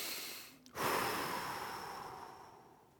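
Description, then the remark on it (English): A slow, deliberate breath: a brief inhale, a short pause, then a long, airy exhale that fades gradually, with no talking. “You're breathing right now. If you need to test that, just...”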